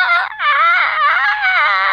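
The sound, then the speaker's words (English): A voice imitates a fox call: a loud, high, wavering cry held for about two seconds with a brief catch near the start, strained and almost sobbing in tone. No other talk is heard. “well, actually, what foxes say is.”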